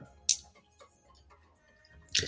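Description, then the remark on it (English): Dice are rolled: a single sharp click, a quiet pause, then a brief hard clatter near the end as they tumble and settle. Nobody speaks. “One second, let me roll some dice.”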